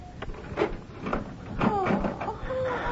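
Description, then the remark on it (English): A key, found on the dresser, rattles and clicks in the lock of a locked bedroom door, followed by the door creaking open. Several sharp clicks and knocks sound at moderate volume, with no clear talking over them. “Is the door locked? Oh, yes. The key is here somewhere.”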